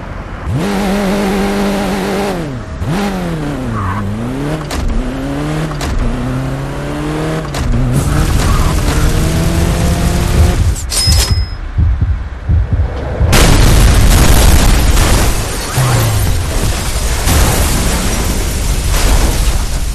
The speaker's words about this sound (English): Yeah, I love the physics playground that like you're given an intersection and said like hit this, go as fast as fucking possible, and try to crash into the biggest, most destructive thing you could.